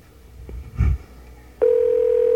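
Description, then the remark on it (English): A couple of soft clunks like a phone receiver being handled, then a steady, loud telephone dial tone begins and hums on without a break. No one speaks. “Pick up the phone if your phone's ringing.”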